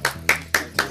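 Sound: one person clapping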